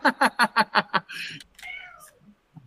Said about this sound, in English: That's George in the hallway meowing because I'm not paying attention to him.